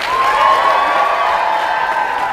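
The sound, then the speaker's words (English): A large crowd at the MegaCon convention in Florida cheers and applauds in a sustained, dense roar, with steady clapping and high whoops running through the whole stretch at a consistently loud level, no talking over it. “That is what I call a Florida crowd.”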